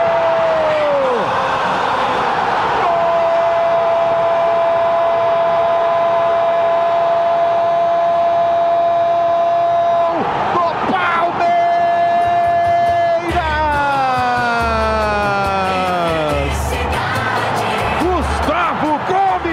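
A crowd of Palmeiras fans at the Mané Garrincha stadium in Brasília erupts after a Palmeiras penalty goal by Gustavo Gomes, a loud sustained roar threaded with steady horn tones, then a wailing, siren-like sweep and pounding rhythmic drum beats joining in.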